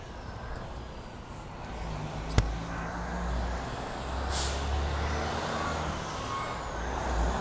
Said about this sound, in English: so we're going to head back this way toward these big trucks where they're coming from. Ooh, they are spewing out the diesel exhaust, I can tell you that much.